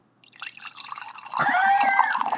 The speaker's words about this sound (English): Can we have, like, an ASMR moment while I pour wine?